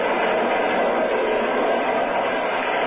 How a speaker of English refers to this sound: I want you to be my guest on a little train ride.